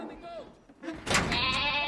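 A goat, the 'calming goat' named Lupe, lets out a wavering, nasal bleat, followed by a sudden louder burst of harsh, bleating noise that fills the rest of the moment.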